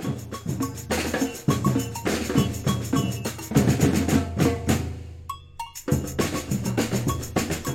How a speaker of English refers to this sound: Yeah, the agogo is a cowbell type instrument with a high and a low pitch bell.